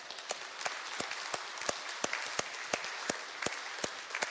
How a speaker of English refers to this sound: Would you guys just give these people a round of applause?